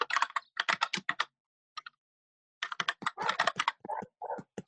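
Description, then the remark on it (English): Rapid keystrokes clatter on a computer keyboard, typing a guess while playing the online game Scribble.io, in two bursts separated by a short pause, the clicks dense and irregular, with no voices. “All right, I'm gonna have to type that shit in.”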